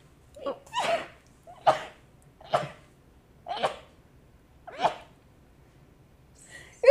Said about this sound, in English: Get this. I gotta sneeze.